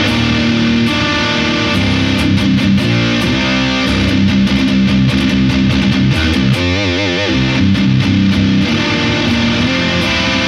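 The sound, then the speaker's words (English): Heavily overdriven electric guitar through a Marshall amp with the boost engaged and an Axolotl overdrive pedal, thick and saturated with sustained crunchy chords and some wobbling bends, played loud with no talking. “I actually like the axolotl with the Marshall when the boost is engaged.”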